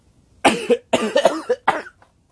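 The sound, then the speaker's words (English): A burst of harsh coughing from a person who is a bit sick, a few rough hacks clustered together over a couple of seconds, heard alone with no talking. “Hold on, I gotta cough.”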